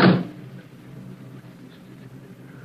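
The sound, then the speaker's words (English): The back door of a car stopped on a deserted road in the evening, several miles from an airport, shuts with a single solid thump right at the start as a figure slips into the back seat, followed by a low, steady rumble of background noise. “On a deserted road, several miles from the airport, a car is stopped and the back door is open. A dark figure emerges from the surrounding shadows and slips into the back seat.”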